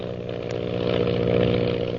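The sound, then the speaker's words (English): Lily DeVril's powerful propeller plane drones steadily with a buzzing, harmonic roar that swells slightly in loudness midway as it flies on to elude a pursuer, with no voices over it. “Lily DeVril's powerful plane zooms on in an attempt to elude the mysterious pursuer.”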